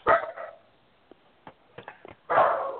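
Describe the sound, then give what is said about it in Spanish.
A female dog barks loudly, a couple of bursts separated by a pause filled with a few short, faint yips and clicks. No one speaks. “y si la perra tuya le quiere preguntar, también que le pregunte.”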